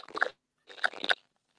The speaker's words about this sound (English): It sounds like a crunching sound, but anyway, I'll digress.